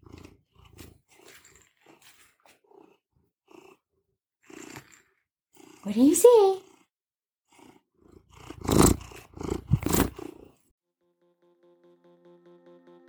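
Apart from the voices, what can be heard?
cat purring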